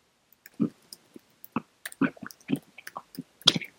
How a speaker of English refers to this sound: Damn, who munching away over there? Smacking.